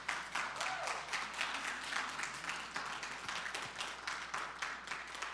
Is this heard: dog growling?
no